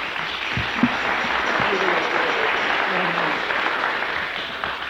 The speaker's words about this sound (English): Give him a clap.